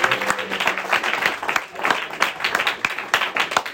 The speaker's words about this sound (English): The crowd screaming, buckets. They said JD buckets. It's too like cumbersome. Buckets, buckets. They were doing like JD buckets. It was too much in a chant.